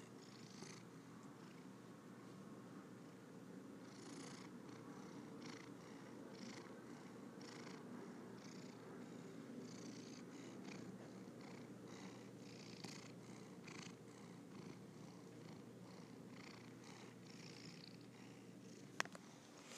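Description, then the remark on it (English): A cat purrs steadily for the whole stretch, a low continuous rumbling with soft rhythmic pulses and occasional faint clicks, no voices. “You have just been witness to another cat purring session.”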